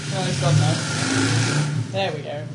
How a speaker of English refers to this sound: Go away, man on motorbike. He's just sat outside there, the apartment, talking to somebody on a car.